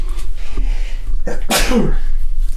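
A single loud sneeze bursts out with a sharp inhaled build-up and an explosive breathy release, followed by a brief trailing vocal tail, with faint room noise around it.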